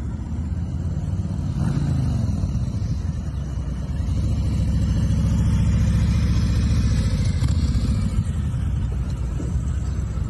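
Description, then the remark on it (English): A motorcycle engine rumbles steadily, its low throaty drone swelling and easing slightly as it rides along, with no voices over it: Wisconsin freshman Congressman Derek Van Orden riding his motorcycle into work on his first day. “And he rode his motorcycle into work for the first day.”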